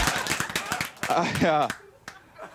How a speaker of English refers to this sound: I hated cheap applause back then.